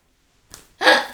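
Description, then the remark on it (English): Someone imitates heavy mask breathing: a short, soft intake of breath followed by a louder, raspy, hissing breath that fades out. “I don't like heavy breathing.”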